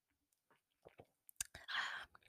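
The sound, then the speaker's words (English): Soft mouth sounds and a few small clicks lead into a short, airy slurp as someone takes a sip of wine, fairly quiet with no talking. “Let's take a sip of wine, everyone, before I announce this one word.”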